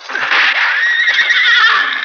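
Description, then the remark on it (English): A horse that has just been hit lets out a loud, shrill neigh lasting about two seconds, a strained, wavering whinny with no talking over it. “Hit one of the horses.”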